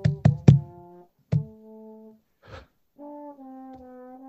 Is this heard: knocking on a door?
yes